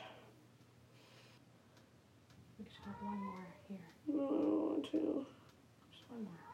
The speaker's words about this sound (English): Our cat's going crazy.